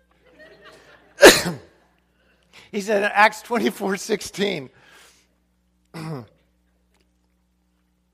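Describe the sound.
A single loud, sharp cough bursts out, like someone choking after swallowing the wrong way, followed by a man speaking in a calm voice.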